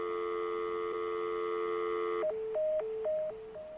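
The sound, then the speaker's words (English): A steady, continuous dial tone from a landline house phone, the sound made when getting ready to dial a number, hums for about two seconds, then breaks into a quick series of alternating higher and lower beeps with faint clicks between them. “It's a phone, but it's not a busy tone. So that's a sound that a phone would make when you get ready to dial a number.”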